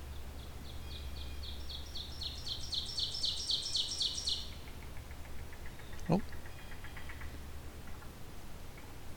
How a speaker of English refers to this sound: A yellow-billed cuckoo here.